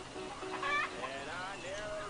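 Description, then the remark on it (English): Long-legged Rhode Island Red chickens clucking, a quick burst of sharp, rising clucks in the middle followed by softer warbling calls, with faint indistinct voices in the background. “Got them nice, long-legged, Rhode Island Red chickens.”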